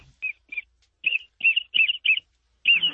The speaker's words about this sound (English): He's just going to call ducks right now.